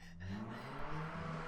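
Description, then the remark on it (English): A car engine rumbles steadily in the background, a low droning hum that holds at a fairly even, moderate level throughout, with no one speaking. “Is that a car in the background? Yes, it is.”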